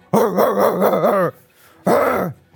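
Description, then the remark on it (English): A dog gives a long, wavering growl lasting over a second, then after a brief pause lets out a single short, loud bark, unaccompanied by talk. “Yeah, and at that point, you two in the, under the stage, you hear growling. Be cool. And then barking.”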